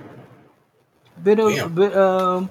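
Faint murmuring fades to a brief silence, then a pigeon lets out two throaty coos: a short one followed by a longer, steady one, fairly loud.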